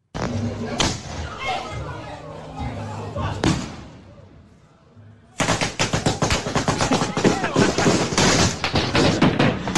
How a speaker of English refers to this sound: It like fell over or something and started shooting all the fireworks like at the crowd. I think it was one of those fireworks that you should either be holding or it's supposed to be in a mount, and they just put it on the floor.